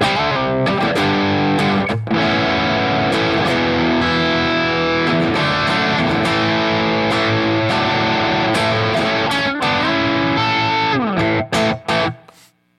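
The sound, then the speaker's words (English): A heavily distorted electric guitar played through a G2 pedal, gain set at about 1 o'clock, plays a dense, sustained riff with thick harmonic layers and brief breaks, staying loud throughout before cutting off into a few choppy stabs at the end. No one speaks. “the demo for the … was written when I got this pedal, like the G2”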